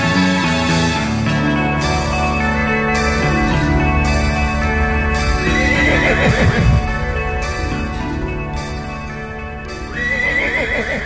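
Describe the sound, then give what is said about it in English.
A voice imitates the neigh of Happy the Horse, with quavering, whinny-like calls rising out of a loud, dense wash of steady tones that continues throughout without pause. “That's his impression of Happy the Horse.”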